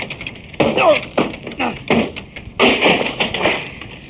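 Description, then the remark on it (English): Heavy blows pound against a locked wooden door as it is broken down, a series of loud, uneven thumps with a cracking, splintering burst near the end as it gives way, over a steady hiss. “Oh, the door's locked. Oh. Stand back, Fern. Yeah. I'll have to break it down.”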